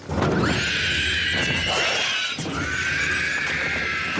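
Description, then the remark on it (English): Two long, piercing screeches from a Ringwraith in The Lord of the Rings, harsh and rasping with a shrill, wavering top, the second following right after the first, loud and with no one talking. “Here's a screeching ring wraith in The Lord of the Rings.”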